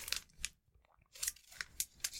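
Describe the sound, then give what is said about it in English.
A paper diary being unwrapped and opened: several short, crisp crinkling and rustling bursts, separated by a brief quiet pause, with no talking. “It's an old school paper diary with an Earthbound 2 cover. Can I open it?”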